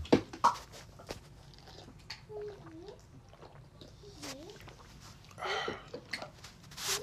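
Someone drinks water: a few soft gulps and swallows spaced a second or two apart, with small wet mouth clicks, quiet breaths and a brief rustle near the end. No one talks.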